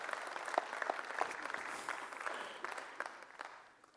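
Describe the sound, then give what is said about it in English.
A church audience claps together during communion in a dense, steady patter of many hands that holds for several seconds before tapering off toward the end. No one speaks over it. “Sure, go ahead and clap.”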